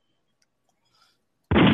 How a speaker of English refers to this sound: I'm trying to figure out what's the gunshots for. Like, Bronx is just a gunshot.